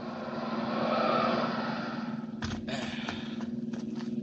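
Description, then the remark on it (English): A car engine hums steadily and swells as a car with two men in it comes up the road, followed by a few sharp clicks and knocks over a low, constant drone. “There's a car coming up the road with two men in it.”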